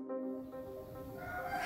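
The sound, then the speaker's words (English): A cockerel crows in one drawn-out, strained call lasting under two seconds, rising slightly toward the end, in Uganda, heard in the background of a Zoom call over a faint background hum, with no one talking. “As well as the cockerel, you might hear some building work in the background of her call.”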